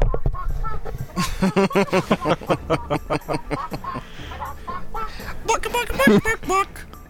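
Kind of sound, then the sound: vocal imitation, person imitating chicken clucking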